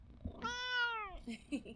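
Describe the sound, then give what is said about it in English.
A cat lets out one long, loud meow, its pitch sliding downward as it fades, with faint murmurs and shuffling just after. “You know, the way he just screams at me.”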